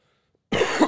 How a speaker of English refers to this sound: See, I'm coughing a little less.